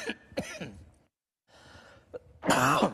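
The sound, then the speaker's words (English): A few rough coughs with breathy pauses between them, ending in one louder, harsher cough. “I'll try to get back there so if I knew a cough is coming on.”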